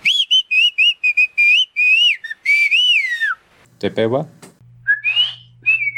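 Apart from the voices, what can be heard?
whistled speech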